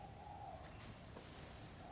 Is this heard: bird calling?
yes